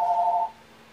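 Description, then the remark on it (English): A phone rings once: a brief, steady electronic two-tone burst lasting about half a second, fairly clear, then it cuts off into quiet. “Oh, I forgot to disconnect my phone.”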